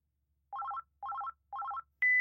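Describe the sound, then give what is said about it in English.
A phone call is placed, the line ringing with three quick bursts of rapid, warbling electronic tones spaced evenly apart, followed by a single sustained higher beep. Clear, with no one talking. “Should we call him up? Phone a friend?”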